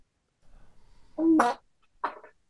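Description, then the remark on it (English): A short, buzzy fart rips out, followed a moment later by a brief, softer puff of noise, with no talking around it. “A fart a drink? We could add that, yeah.”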